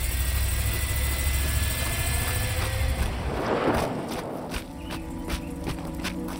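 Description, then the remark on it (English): A car engine idles with a low, steady rumble as the car backs out of a driveway, then a brief rushing swell rises midway before the motor settles, joined by scattered light clicks and taps. “was pulling out, backing up down the path. She stuck her head out the window and slammed on the brakes when she saw us.”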